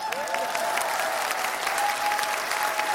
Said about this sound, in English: So after this donation, it'll be free for at least 5 years. Round of applause.